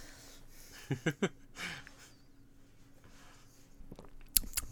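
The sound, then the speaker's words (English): Quiet mouth sounds of someone tasting a homemade cocktail: three quick wet lip smacks, a soft slurping sip, then a pause before a couple more sharp smacks at the end. No talking. “Smack your lips in the fucking...”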